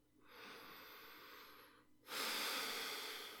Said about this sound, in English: And he hangs up the phone and heads into the room that you're in and stops at the foot of the bed. You hear some heavy breathing.